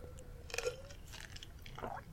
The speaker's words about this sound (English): And like, what are you doing? I'm thirsty. Oh, you're chewing ice.